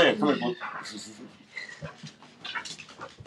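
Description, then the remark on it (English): A dog called Cat whimpers and gives a few short, high yips, with bursts of breathy panting between them; the sounds come in uneven clusters over a few seconds. “That's right, he a dog, but I call him cat.”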